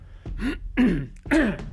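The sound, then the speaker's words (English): Three harsh, loud coughs in quick succession from a very sick person, raspy, each a short guttural burst with a throaty, phlegmy edge, no talking. “He coughs loudly.”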